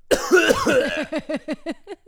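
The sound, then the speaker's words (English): A harsh coughing fit right into the mic: one rough opening burst, then a rapid string of shorter hacking coughs that gradually fade. Nobody speaks. “Guys like when we cough into the mic during these podcasts?”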